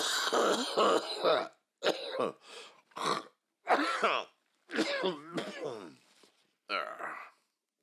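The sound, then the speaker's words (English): A voice acts out a man coughing and clearing his throat, in a series of short, rough bursts separated by brief pauses, ending with a hawking sound as he spits into his handkerchief. “Then he coughed and spit into his handkerchief.”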